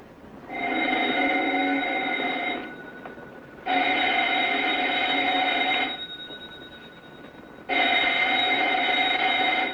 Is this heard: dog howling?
no